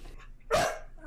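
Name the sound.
dog barking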